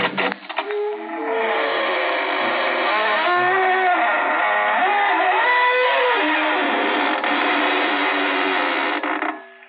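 A long, loud creaking door groans open, its squealing pitch wavering and sliding for nearly ten seconds with no voices: the creaking door of the Inner Sanctum Mysteries radio show.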